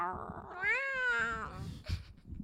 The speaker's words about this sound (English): Ooh, calm down. Fat cat's meowing. She just wants to get out. She's really anxious.